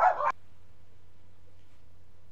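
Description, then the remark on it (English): A single sharp dog bark, loud, cuts off quickly and leaves a low steady hum with no other sounds. “I guess the dogs, they were fans of the Edge and Undertaker match as well”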